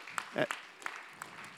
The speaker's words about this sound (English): Now, before you go, you can clap. Give Jesus a hand.